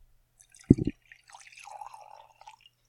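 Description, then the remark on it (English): Rosé wine poured into a glass: a short clunk, then about a second and a half of soft, gurgling liquid trickling into the glass, fairly quiet with no talking. “Do you mind pouring me some more rosé while I talk about this?”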